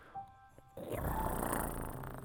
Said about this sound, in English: Not a growl, that's a purr